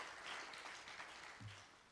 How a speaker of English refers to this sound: Could we clap our hands to the Lord for putting together a package?